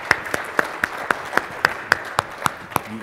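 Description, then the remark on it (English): Applause for a presenter as his talk ends, with a steady run of about a dozen sharp, evenly spaced claps standing out over a soft, continuous rustle of background clapping. No one speaks. “He gets an applause, and they're happy it's over.”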